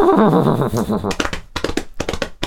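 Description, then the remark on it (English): A horse neighing sound effect: the horse whinnies loudly for about a second with a quavering, wavering pitch, then breaks into a series of short, breathy snorting bursts. “Time now to hold on to your metaphorical audio horses.”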